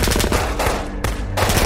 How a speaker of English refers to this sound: I nodded, and we opened fire.